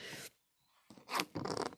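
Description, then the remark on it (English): Someone slurps a sip of super hot tea: a short airy slurp, a brief pause, then two longer, louder hissing slurps in quick succession, with no talking. “I almost have to slurp it.”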